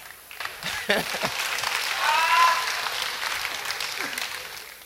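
A crowd claps steadily in a dense, continuous patter that swells briefly in the middle, with faint cheering or a whistle rising over the applause and a few scattered voices.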